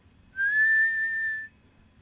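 A single loud, sustained human whistle holding a steady high pitch with a slight upward glide, lasting just over a second against a quiet low background hum.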